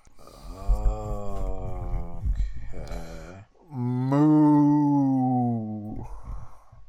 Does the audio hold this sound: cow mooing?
yes